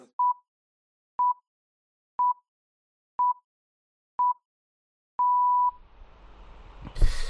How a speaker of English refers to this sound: So if you want to sync up your recording of the episode to our commentary, then hit play at the end of these beeps.